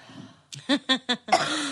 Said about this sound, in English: I'm sorry. I have to cough. We need That's a okay. cough button.